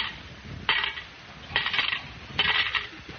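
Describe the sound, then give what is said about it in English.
Three bright metallic clinks spaced about a second apart as coins totalling 40 cents are dropped one after another into a kitty, with a faint background hiss and no talking. “You put 40 in the kitty.”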